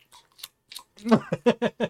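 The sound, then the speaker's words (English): A person deliberately chews loudly, with wet, smacking mouth sounds, starting with a few soft clicks and then building into a quick, steady run of five or six noisy chomps. “So then I would start chewing even louder, you know?”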